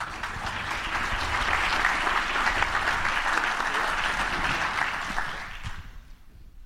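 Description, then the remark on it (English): A roomful of people clapping steadily for a panel at the end of a session, a dense, even wash of applause that holds for several seconds before tapering off at the end. “I think we're out of time, so I want to thank the panel, and let's give the panel a round of applause.”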